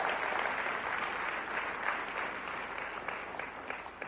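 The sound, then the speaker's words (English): A crowd at a sermon clapping together about a newly built auditorium, steady dense applause for several seconds without a pause, moderately loud, with no voices standing out. “So, yes, we need to clap about that.”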